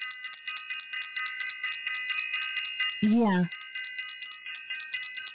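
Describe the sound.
A bell, rung by the host of a chakra course, rings with a bright, sustained high tone made of several layered overtones, holding steady and slightly pulsing throughout, while a voice briefly speaks a single word partway through.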